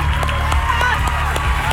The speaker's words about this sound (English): But all the applause is fake, right?